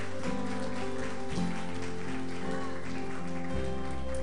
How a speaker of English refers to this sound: Church, can we just give God a hand clap of praise for what he's doing in this place today?